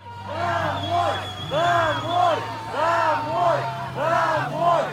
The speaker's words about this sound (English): Finally, there have been extraordinary scenes in Kherson, the only major city that Russia has so far occupied, where crowds forced back Russian military trucks on Sunday, shouting at the occupants to go home.